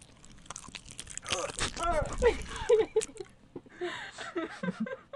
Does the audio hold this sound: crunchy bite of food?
yes